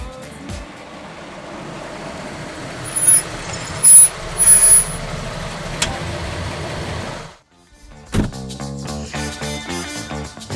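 A bus arrives at Full Circle Brewing in downtown Fresno, rumbling as its brakes squeal briefly before a quick burst of air brake hiss. After a short pause, a different steady, tonal sound takes over.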